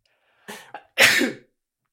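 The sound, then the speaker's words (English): A single loud sneeze: a short wheezy intake of breath in two quick catches, then a sharp explosive burst that trails off after about half a second, with no talking. “Bless you.”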